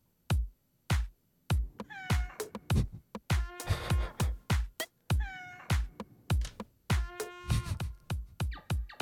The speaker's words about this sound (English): Okay, I can hear a cat, a trumpet, and an elk bugle. Yeah, you got it. Oh, that is like the definition of cacophony.